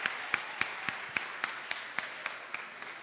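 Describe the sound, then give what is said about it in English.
An audience claps hands for the Lord in a steady, even rhythm, about eleven sharp claps in three seconds, over a constant hissy wash of crowd noise, with no one speaking. “Clap your hands for the Lord and stand to your feet.”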